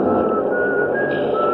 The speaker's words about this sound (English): Doors close behind me and everybody in the car is rushing to find a seat. Over the noise, I hear some contented soul whistling.